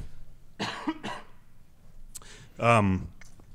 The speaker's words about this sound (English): sorry, I need to cough a little bit.